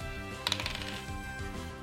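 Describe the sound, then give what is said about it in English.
Dice clatter briefly across a hard tabletop in a quick burst of small clicks and taps, heard over a steady low musical drone that continues after the rattling stops. “14 on the dice, so it's not going to flinch, but 14 plus 4, 18 to hit.”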